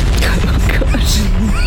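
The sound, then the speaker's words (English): A loud, sustained rumbling roar of many overlapping explosions going off at once, like a pirate ship's worth of powder kegs igniting simultaneously, deep booming crackle filling the whole moment, with faint whistling tones cutting through near the end. “and then a sound that could really only be described as a entire pirate ship's worth of powder kegs being ignited simultaneously.”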